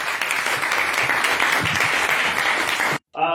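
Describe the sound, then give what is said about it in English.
Sustained applause from a crowd for all the speeches at the end of a debate evening, loud and dense for about three seconds, then cuts off abruptly before a voice begins to speak. “And if we can get one more round of applause for all of our speeches this evening.”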